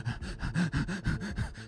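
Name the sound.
imitated heavy panicked breathing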